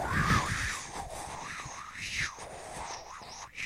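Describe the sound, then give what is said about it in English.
A voice imitates wind, blowing a steady breathy whoosh that rises and falls in pitch in slow, wavering swells, with no words spoken. “Now don't talk to me. I'm making wind noises.”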